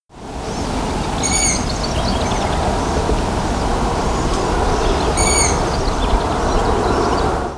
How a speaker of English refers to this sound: And the Merlin app straight away identified this as a long-eared owl. Now, I've heard long-eared owls in the past, but I was unfamiliar with this particular call.